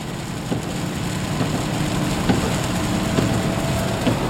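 heavy rain downpour

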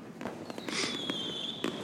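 fireworks going off

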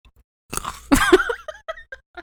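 crunchy food being chewed

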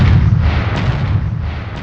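explosion sound effect

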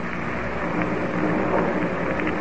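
distant thunder

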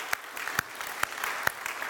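audience clapping

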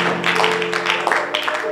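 audience clapping hands

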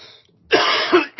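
cough and throat clearing

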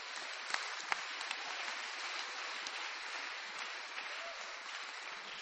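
audience cheering and applauding

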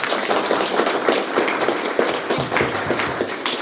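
round of applause

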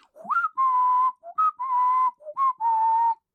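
human whistling a tune

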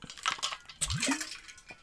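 water spilling

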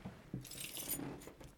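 keys jangling

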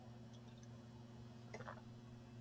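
speaker sipping water

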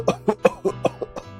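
heavy coughing

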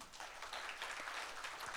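round of applause

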